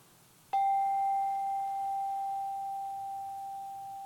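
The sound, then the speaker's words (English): A single meditation bell, the final bell of a meditation, is struck once, giving a clear, pure tone that rings on and fades slowly over several seconds, with no voices. “when you hear the final bell, you can open your eyes.”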